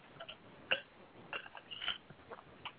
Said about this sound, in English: But hold on. Let me get me a little sip real quick.